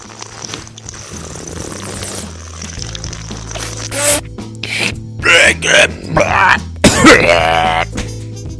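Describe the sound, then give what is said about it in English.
A loud coughing fit after a bong hit: a string of harsh, raspy coughs and throat-clearing bursts in quick, uneven succession, building after a quieter start over a low steady hum. “Yeah, I've had a few shots in my day from a bong cough.”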